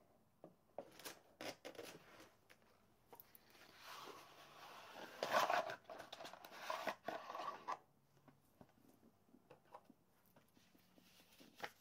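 Papery riffling and rubbing of a deck of tarot cards being shuffled, with a louder burst of rapid flicks midway and scattered soft taps, quiet overall with no talking.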